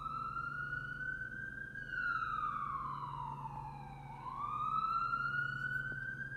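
An ambulance siren wails loudly and steadily, its pitch sliding slowly down and then sweeping back up, over a low rumbling engine-like hum, with no voices.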